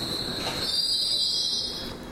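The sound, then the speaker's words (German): Train wheels squeal steadily in a high, piercing tone over a continuous low rumble of rolling rail cars, sustained and fairly loud throughout without pause. “Quietsch, quietsch.”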